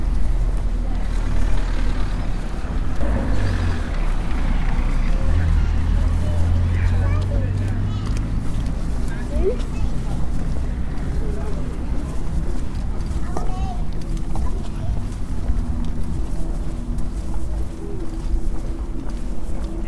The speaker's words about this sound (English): That's my walking almost done for the day. I just passed the harbour.